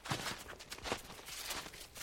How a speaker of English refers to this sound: But right now, you finally found some space to yourself, and the only sound wafting through the air is your footsteps crunching through the snow.